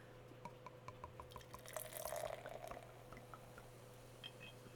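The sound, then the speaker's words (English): A slightly cloudy golden ale poured into a glass: scattered drips and trickles swell into a short, fuller gurgling pour with a fizzy hiss midway, then taper off to drips again, quiet, over a low steady hum. “And the pour.”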